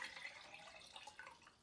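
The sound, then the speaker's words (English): Water pours steadily from a jar into a pot of food being cooked, a continuous soft splashing and gurgling that stays fairly quiet, with slight swells in the stream and no talking. “So I'm gonna add in another can of water.”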